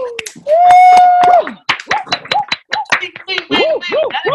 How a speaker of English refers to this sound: Everybody, unmute your mics right now and give me a huge round of applause. Come on.